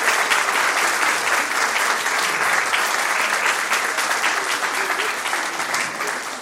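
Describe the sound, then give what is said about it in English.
A room full of people claps steadily after someone recites a blessing, a dense, even wash of applause that holds at the same level for several seconds with no voices rising above it. “I think we'll allow a little round of applause there, because you did very well there.”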